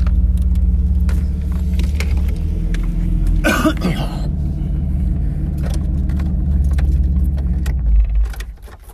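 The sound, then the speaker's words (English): A car engine rumbles steadily as the car is being parked, with a brief metallic jingle of keys partway through and scattered small clicks, before the engine noise cuts off near the end. “So here I am. I'm going to park. Got to empty out my car right now in a little bit.”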